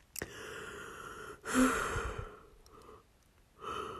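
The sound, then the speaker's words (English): A drawn-out yawn with a breathy, voiced stretch in the middle and a softer exhale at the end, with no talking. “I don't know why I keep yawning, but yeah.”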